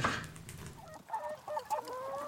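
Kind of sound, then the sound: bird, hens clucking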